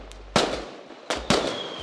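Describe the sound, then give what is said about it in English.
Three sharp fireworks explosions crack in quick succession, each booming loudly and fading with a crackling tail, while a thin whistling tone trails through the last second. “Fire off the fireworks.”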